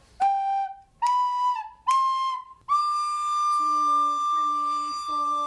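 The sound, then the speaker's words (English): Third grade students in a recorder class at Imperial Academy play recorders: three short, bright notes, then a long held high tone while a lower part enters with a few repeated notes beneath it. The playing is fairly loud and there is no talking. “And she teaches the third grade recorder class at Imperial Academy this year.”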